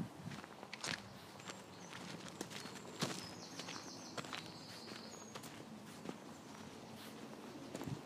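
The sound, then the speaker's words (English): Seven horses walking, their hooves clip-clopping in an uneven, overlapping rhythm over a steady outdoor background, with faint bird chirps high above. “See 7 horses.”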